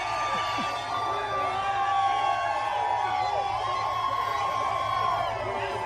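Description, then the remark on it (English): A large crowd in New Hampshire cheers and shouts as Donald Trump greets them on the day of the first-in-the-nation primary, many overlapping voices whooping and calling out at a steady, loud level throughout. “Donald Trump greeting the crowds here as the first in the nation primary gets underway in the great state of New Hampshire.”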